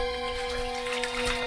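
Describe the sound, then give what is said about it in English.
Steady sloshing and splashing through a thick river of liquid gold in the dark, continuous, with a low mechanical hum running underneath and no voices. “Ew! Doctor! What kind of water... What is this?”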